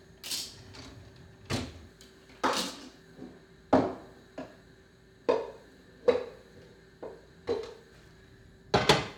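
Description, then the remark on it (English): Pots and dishes clatter as cooked noodles for macaroni and cheese are taken out, about a dozen sharp clanks and knocks at irregular intervals, some ringing briefly, over a faint steady hum. No one speaks. “Oh, hold on. I gotta take these noodles out.”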